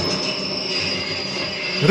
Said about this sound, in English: For the audience, a train is approaching. Yes. A subway train. You see that light at the end of the tunnel?